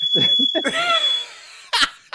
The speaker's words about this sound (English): Sounds like your fire alarm.